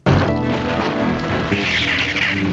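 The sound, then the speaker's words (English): A cartoon sword making a lightsaber sound effect as Storm Shadow sneaks in to steal the anti-Cobra radar system: a loud, continuous electric buzz with harsh clashing texture, a brighter whining tone swelling through the latter half, running for a couple of seconds with no voices. “You're not going to tell me that's not a lightsaber. That is a lightsaber. Lightsaber noise.”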